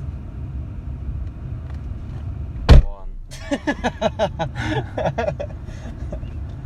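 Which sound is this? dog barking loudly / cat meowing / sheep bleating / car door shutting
car door shutting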